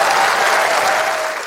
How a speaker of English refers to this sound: So big thanks to her. And please give her a clap. She'll love it back home.